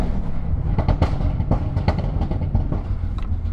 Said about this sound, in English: When you accelerate and then... let go of the accelerator and it decelerates, it pops and bangs, makes pops and popping and banging noises. But to do a quick demonstration.